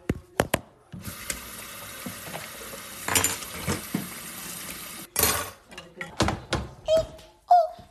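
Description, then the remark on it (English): Running water splashes steadily from a tap for several seconds, then stops, followed by a series of sharp clinks and clatters of dishes and utensils being handled while washing dishes in a kitchen. “And then dishes.”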